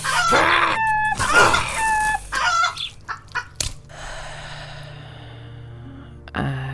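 A loud, harsh bird squawk with clucking, crowing-like calls in two bursts, followed by a few short squawks that trail off into quiet, then a final sharp sound.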